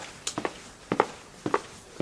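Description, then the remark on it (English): Firm footsteps strike hard pavement in a steady, even stride, each step a crisp heel-then-toe double tap, repeating about three times over a quiet background. “Confident footsteps on pavement, like this?”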